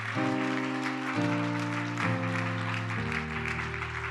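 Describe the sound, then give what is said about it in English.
A church audience applauds steadily throughout, giving God a round of applause. A dense wash of clapping blends with loud sustained organ chords that shift roughly every second, with no talking. “Come on, somebody give God a round of applause.”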